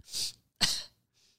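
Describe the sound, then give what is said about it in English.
A sharp, breathy burst followed by a second forceful exhale, an attempted sneeze building and then sputtering out, with a faint hiss trailing after. Fairly loud, with no talking. “You got a sneeze? Yeah. Let's hear it.”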